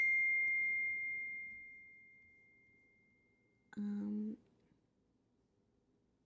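A single bright electronic phone chime rings out and slowly fades over a few seconds, then a brief buzzy tonal burst follows, with no talking.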